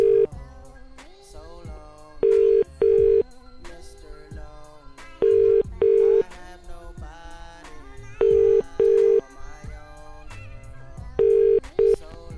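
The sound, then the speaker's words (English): An outgoing telephone ringing tone from a call to a number taken from the phone book: paired double-rings repeating about every three seconds, four times, loud and clear over a busy background of other sounds. “I'm just calling people out the phone book.”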